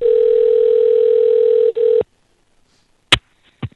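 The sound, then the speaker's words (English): A telephone ringing tone of an outgoing phone call hums steadily and loudly for about two seconds with one tiny break, then cuts off, followed by quiet and a couple of sharp clicks like a line picking up. “we got to call Jeff and ask what he thinks about Beyblade”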